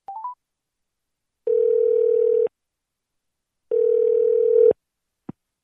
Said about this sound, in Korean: 전화 연결을 해보도록 하겠습니다.